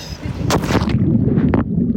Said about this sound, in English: I leap off the boat, and pretty quickly, once my head was under the water